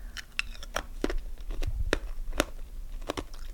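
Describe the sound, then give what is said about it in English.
Sharp, brittle crunches of ice being chewed, about a dozen irregular cracks and snaps in quick succession over a low rumble, with no talking. “This just sounds weird to like chew on ice.”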